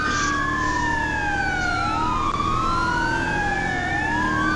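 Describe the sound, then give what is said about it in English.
An emergency vehicle siren wails loudly and continuously, its pitch sweeping slowly up and down over a steady rumble of engine and road traffic. No one speaks. “Why would you stop in front of the emergency vehicle?”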